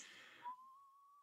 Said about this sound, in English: Whoa, you got the whistle down.